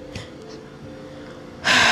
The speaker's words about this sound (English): See me breathing into the mic. I wonder how that sounds, because like breathing like sounds good in the real world, but it's probably sounding like on like here.